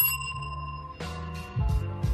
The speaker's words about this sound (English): ring the bell.